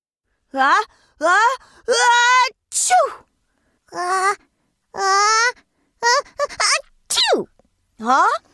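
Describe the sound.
A voice playfully imitates sneezes, drawn-out rising 'ah-ah' sounds bursting into breathy choos, repeated several times in quick succession, fairly loud with short pauses between.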